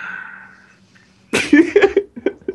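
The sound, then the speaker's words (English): After a quiet, humming stretch, a sudden breathy burst opens into a drawn-out, voiced yawn that wavers in pitch and trails off in a few short, uneven pulses. “No yawning. I know, I'm yawning too.”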